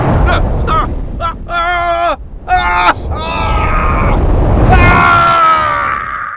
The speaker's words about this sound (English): The fire of the flame drowned his screams, and soon there was nothing but a puddle of black liquid left of him.